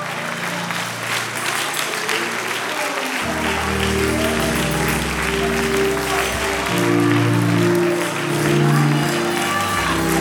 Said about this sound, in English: Come on, come on, give God the glory. Don't stop clapping.